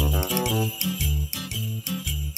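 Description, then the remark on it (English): Christmas bells jingle in a bright, steady rhythm, shaking on each beat over a bouncy instrumental tune with a thumping bass line. No one speaks. “And so it begins. So it begins. The Christmas bells.”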